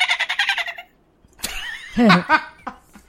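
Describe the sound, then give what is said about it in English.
A voice imitates a dolphin and then a chipmunk: first a fast, high chattering burst, then after a short pause a run of squeaky whistles and chirps that slide in pitch, fairly loud. “Oh, well, so I can do a dolphin. And I can also do a chipmunk.”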